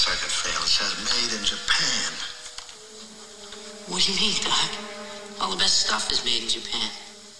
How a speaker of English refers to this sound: So the scene does exist, but as you can hear from the echoey, creepy music in the scene, it's where they find the car underground in part three.